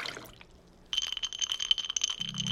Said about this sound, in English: glass, ice, pour.